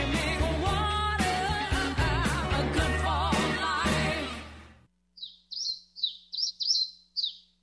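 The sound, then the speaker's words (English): After loud music cuts off, a bird chirps about seven times in quick succession, bright, high-pitched tweets heard alone. “One thing we all have to remember, as the weather gets colder, so do the birds.”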